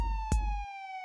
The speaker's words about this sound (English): cowered under the awning as a police car screeched around the corner and a wave of relief at the familiar colours washed over them.